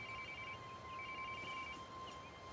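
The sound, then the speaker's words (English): A mobile phone rings as a search team calls it, a thin electronic tone pulsing on and off steadily. It sounds faint over a constant hiss, with no one talking. “Her radio is out of action, but they keep calling her phone. Eva hears it ring.”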